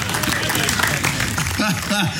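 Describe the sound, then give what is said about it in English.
A crowd applauds and cheers for the Cereal Gorillas in a steady wash of clapping, with a few voices calling out over the noise near the end. “Cheers, ladies and gentlemen, please cheer quietly and gently for the Cereal Gorillas.”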